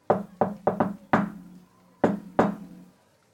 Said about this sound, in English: I do my patented cool guy knock on the door.